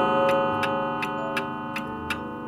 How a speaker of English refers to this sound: Here the clock struck one, and immediately the apparition faded away.